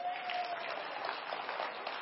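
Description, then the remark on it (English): A crowd claps hands steadily for a couple of seconds as a hand praise to God, a dense, loud wash of overlapping claps with no individual beats standing out, and a faint voice briefly audible underneath. “Our hand praise is going to be loud.”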